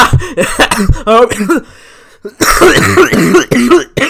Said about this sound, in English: That cough actually really hurt. Okay. Oh my god, oh my gosh, my throat is killing me right now from that.